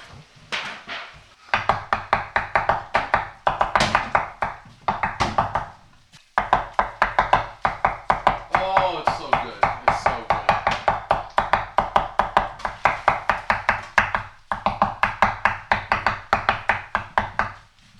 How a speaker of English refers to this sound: Listen to the chops. He knows how to dice up lettuce. This is a head of lettuce going down, being broken down in 5.